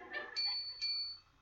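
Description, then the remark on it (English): Two quick, bright dings from a small bell on a Potty Polly toy as it is sat on, about half a second apart, each ringing out with a clear high tone that fades, moderately loud. “And she makes the bell go ding, ding.”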